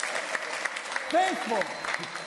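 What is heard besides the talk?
audience applause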